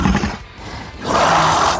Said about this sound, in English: And so you poke a couple of buttons on your arm and just this like loud roar... sounds from your data pad.